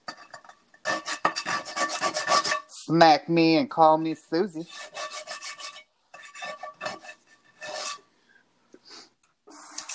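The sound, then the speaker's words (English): Harsh, raspy scraping of a pen across a surface, coming in irregular gritty bursts, with a person speaking over part of it. “Sorry if this is loud, me scraping this pen.”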